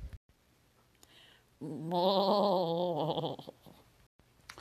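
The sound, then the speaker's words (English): A single goat bleat lasting about two seconds, loud and nasal with a wavering, quavering pitch, heard alone against a faint low hum with no talking. “All right, now, for real, Inspiration Goat, please bleed at me.”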